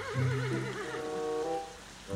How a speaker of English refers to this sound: and the buzzing is silent and all you can hear is the rain.